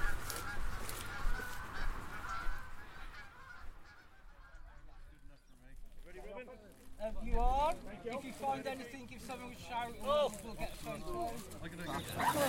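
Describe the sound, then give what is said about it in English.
A flock of geese honks repeatedly in loud, overlapping bursts, continuous through the second half, with a person speaking briefly over them. “I'm just here on Goose Watch, and then I'll be back down for the metal detectorists. Bye, geese.”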